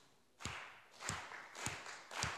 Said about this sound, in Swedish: Okej, stopp. Var det någon som blev glad? Ja, vi blir glada av att klappa händerna.